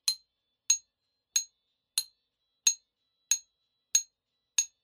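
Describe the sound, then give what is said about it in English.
An empty beer bottle struck as percussion in place of a cowbell for a song, eight times in a steady, even beat, each hit a bright, thin glassy clink with a quick decay and no low body, played alone with no voices. “I just used an empty beer bottle for the bottle sound and thought it sounded kind of thin and weedy”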